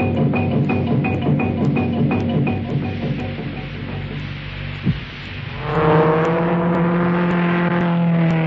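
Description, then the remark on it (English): A car engine idles with a steady, throbbing rumble, then roars louder as it revs up and accelerates, its pitch climbing in a sustained whine. “For the man who knows how to handle his car.”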